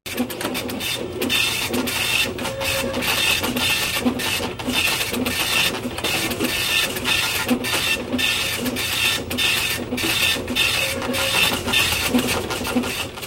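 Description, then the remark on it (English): A diagnostic machine at a chemist prints out test results, its mechanism clattering and whirring in a fast, even rhythm for several seconds. No voices are heard. “He goes back to the chemist, locates the machine, pours in the sample, and deposits the $10.”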